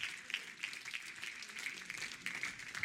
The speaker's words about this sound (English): Oh, somebody clap your hands and thank God. Hallelujah.